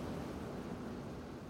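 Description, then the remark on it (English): Waves lap against something while water rushes steadily, a continuous, even wash of sound at moderate volume with no voices and no breaks. “Lapping waves and rushing water.”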